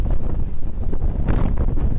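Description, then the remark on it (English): Steady, loud wind buffeting a ship at sea on a fairly rocky first morning of the voyage, probably while crossing the Bay of Biscay, a dense low roar with gusty surges and airy hiss, no voices. “So you can probably hear that we're now at sea.”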